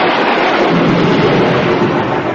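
A loud, sustained roll of thunder, a dense rumbling crash that fills the whole moment without fading, with no voices.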